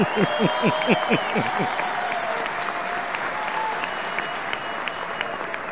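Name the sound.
audience clapping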